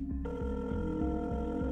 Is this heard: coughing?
no